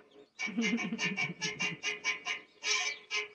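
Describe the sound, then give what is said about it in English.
A hen clucks in a quick, steady run of about nine or ten short raspy bursts, fairly loud, with no talking over it. “She was a good little hen.”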